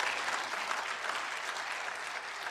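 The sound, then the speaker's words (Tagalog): An audience claps steadily throughout at a preacher's request during a sermon, a dense, even wash of applause from many hands at moderate volume with no voices standing out. “Lakasan niyo yung palakpak.”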